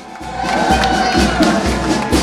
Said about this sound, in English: Welcome to Chicago! Midway is filled with family and friends. Cheering nonstop.